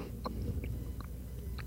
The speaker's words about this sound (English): You have to chew it for a second, and then the flavor shows up, and it's like Egg.